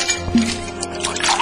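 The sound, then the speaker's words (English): A drink is poured into a glass, a steady liquid gurgle with small splashes and drips over about a second and a half, with no talking. “Pull up a stool and let me pour you a drink.”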